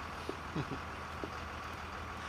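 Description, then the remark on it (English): A bus engine idles with a steady, low rumble, broken only by a few faint short knocks, and no one speaks. “But now I've got to get on the bus, or it's liable to drive away without me.”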